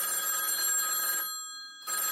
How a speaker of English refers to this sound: A few minutes later, the silence is broken again by the ringing phone.